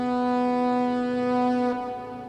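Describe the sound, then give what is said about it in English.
A loud trumpet-like horn, blown on the far side of a river on a frosty night, holds one long, steady brassy note with rich overtones, wavering slightly in pitch near the end, with no voices present. “And you can hear a trumpet, a very loud trumpet, like a horn being blown.”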